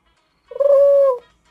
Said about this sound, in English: That's a pigeon. I finally got my soundboard up, and I got to get it under control.